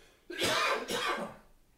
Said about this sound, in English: That's all right, folks. So, I lost my train of thought there with the coughing fit.